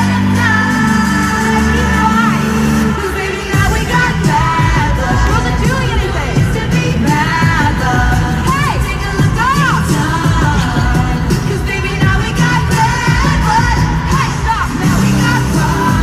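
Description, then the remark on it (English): A loud live concert crowd roars nonstop while a female singer's amplified voice yells over the din, with scattered cheers and whoops mixed in. “So she, did you hear her yelling at the crowd?”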